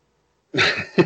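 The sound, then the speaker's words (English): A woman's hiccup: an abrupt, breathy vocal burst breaks the silence, fading briefly before a second, shorter and sharper catch follows. No talking. “So that was just her hiccup.”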